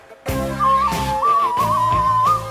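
A death whistle blows in a shrill, wavering tone that runs through most of the short stretch, sitting over loud rhythmic music with a steady pulsing beat.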